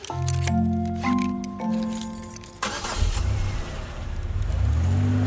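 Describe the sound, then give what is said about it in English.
A car engine hums steadily, then revs up loudly with rising pitch as the car accelerates away, driving off to a concert, with no talking. “Whero grabs his phone, climbs into his car, and takes off to the concert.”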